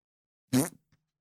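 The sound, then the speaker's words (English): A single loud, buzzy fart noise bursts out for about a quarter second, trailing into a brief sputter and a faint final pop, with silence around it and no talking. “It's me farting into your face.”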